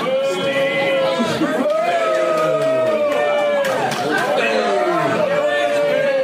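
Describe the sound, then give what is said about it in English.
A large crowd at a live show boos loudly and without pause, a dense wall of long, drawn-out voices overlapping and swelling for several seconds. “And then all the booing. This is the big, big boo here.”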